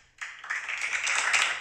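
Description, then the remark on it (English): Soft, subdued clapping from a small golf crowd begins abruptly and continues as a steady, dense patter of polite applause, fairly quiet throughout. “It's a golf crowd. They were worried about making too much noise.”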